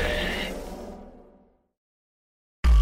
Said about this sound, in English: Warning, signal interruption detected.